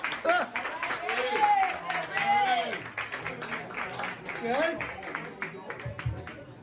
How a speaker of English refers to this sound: Let's hear it for him. Put your hands together. Make him feel good. Give him a clap.